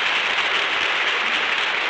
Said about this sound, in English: That applause goes from coast to coast.